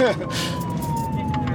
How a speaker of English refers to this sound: And for the first time all day, Officer Ruff put on his lights and sirens.